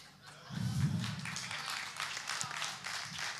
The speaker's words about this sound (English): 15 of you clap because you got some opinions about it.